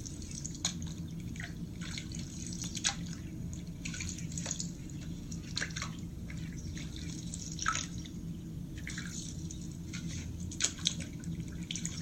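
Gentle water sounds of paddles dipping in and out of the still surface of a calm lake in the evening, with soft irregular splashes and drips over a steady low background hush. No one speaks.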